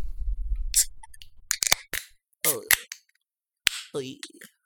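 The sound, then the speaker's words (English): A can of Art Hazy IPA, a 6.5% ABV hazy IPA beer, cracks open with a few sharp metallic clicks and snaps after a low rumbling start, followed by brief bursts of voice-like sounds and short hisses. “Probably brewed with some Citra hops, I'm guessing. 6.5% ABV. Just a nice, fruity, effervescent experience. Love it. So, we crack.”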